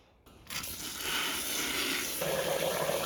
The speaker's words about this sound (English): We're just gonna fill this with water.